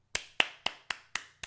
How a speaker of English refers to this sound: Our boss man needs a round of applause.